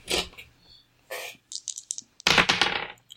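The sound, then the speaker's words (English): Two dice rattle and clatter across a hard surface, with a few sharp clicks followed by a louder, scattered burst of tumbling before settling. No one speaks. “And I will also use Inspiration, so I get to roll 2 dice.”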